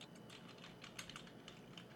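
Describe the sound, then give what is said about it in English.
Rapid, irregular clicks of fingers typing on a computer keyboard, a steady patter of light keystrokes with no voices. “I hear typing.”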